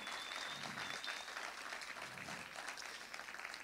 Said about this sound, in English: And not only did we want to honor my pop-up on this Veterans Day, but we want to honor all of the veterans of this amazing country, all of the veterans that are here this morning. If you just give them one more round of applause and admiration.